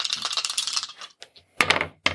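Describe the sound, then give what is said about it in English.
Two dice rattle and tumble across a hard surface for about a second, then land with two sharp clacks, one after the other, rolled for an initial engagement roll. Nobody speaks. “So, 2 dice. Let's figure out the initial engagement roll.”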